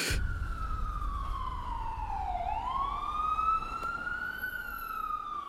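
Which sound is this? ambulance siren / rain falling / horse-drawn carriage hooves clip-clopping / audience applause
ambulance siren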